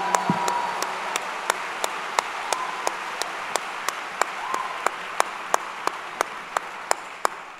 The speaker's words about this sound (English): Don't let that go over your head. Clap it up for that, ladies and gentlemen.